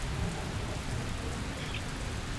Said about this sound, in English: it's raining. Admire the stone later on our way back, and hopefully it won't be raining.